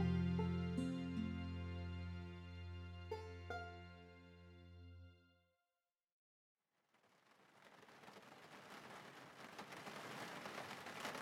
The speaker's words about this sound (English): As you can hear outside, folks, it started raining like cats and dogs without a sign of it letting up anytime soon.